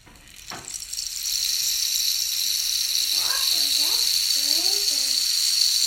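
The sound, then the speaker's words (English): A rain stick upended during a show and tell with a reading of Seamus Heaney's poem The Rain Stick. Its rushing, hissy cascade swells in after a moment and pours steadily to the end, with a faint voice-like murmur surfacing briefly midway. “Upend the rain stick.”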